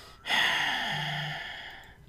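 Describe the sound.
A voice imitates Michael's heavy breathing from the film Halloween: one long, loud, breathy exhale that starts abruptly and slowly trails off over about two seconds, with no talking.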